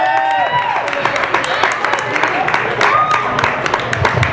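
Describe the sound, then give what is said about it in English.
An audience keeps up a steady round of applause for a team of young women and their coach after a phenomenal season, dense and loud throughout, with cheering voices and high whoops rising above the clapping. “And while we're keeping the round of applause going, how do you like your Syracuse Orange right now?”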